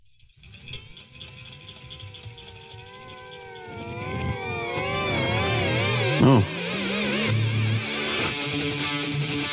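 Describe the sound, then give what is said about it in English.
A synthesizer intro opening a rock track: wavering, pitch-bending tones that swirl and swell steadily louder over a buzzing high layer, with low sustained notes entering late. A voice briefly exclaims once. “We had the weird cats to open the last track, and this one's like a more of a synthesizer thing.”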